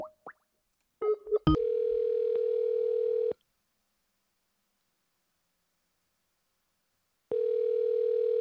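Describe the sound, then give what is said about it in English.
Phone line ringing on an outgoing call: a few clicks, then a steady electronic ring tone that lasts two seconds, a long silence, and the tone starts again, with no one picking up. “A lot of people don't answer their phones at dinner.”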